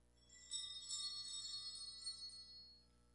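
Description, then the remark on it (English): A small, high-pitched bell is rung three times, jingling quietly for about two seconds, its bright ringing tones rising and fading slightly before dying away. No one speaks. “And our teachers would practice, like, for when we had to go an earthquake, they would ring their bell three times. So ring your bells three times.”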